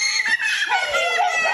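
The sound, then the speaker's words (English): Several young children at a daycare center called Little Blessings scream in terror as an adult wearing the Ghost Face mask from the Scream films yells in their faces; their high-pitched, overlapping shrieks rise and fall continuously and loudly, with no pause across the short stretch. “Children screaming in terror at a daycare center as a grown-up wearing a scary mask yells in their faces.”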